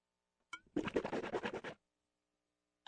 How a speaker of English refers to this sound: Hold on. I have to swish some water in my mouth very quickly.